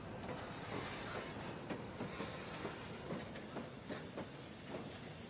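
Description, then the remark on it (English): A steam train puffs and snorts steadily a little way off, its rhythmic chuffs repeating about twice a second over a continuous rumbling hiss, fairly loud, with no voices. “Just then, his attention was caught by some red and green lights a little way off, and the sound of puffing and snorting.”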